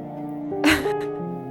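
A single abrupt sneeze bursts out as a short, hissing blast of noise, followed by a faint breathy trailing sound, over steady, soft tonal music.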